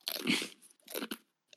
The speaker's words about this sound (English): Just fucking is that crunching. A chip crunching ASMR? Yeah. Oh, not gonna lie, that's a little hard. Who's crunching right now? Not me.